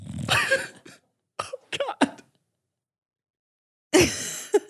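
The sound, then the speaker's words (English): A dog named Buckley snores in rough, raspy snorts: a long wheezy breath, a cluster of short snuffling bursts, a pause of near silence, then another loud grating snore. No one speaks. “Buckley is snoring. I was hoping you couldn't hear it. Everyone can hear it.”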